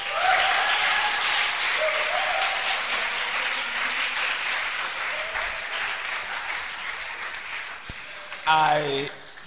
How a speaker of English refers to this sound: Keep clapping your hands at this time. Wow. Hallelujah. And I want you to clap your hands for all the groups. Give it up for Sparkle. Give it up for the film stars. Clap your hands for the choir. And above all, clap your hands for yourself.